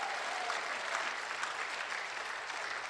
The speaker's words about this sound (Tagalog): Mahinang pumalakpak mga tao rito.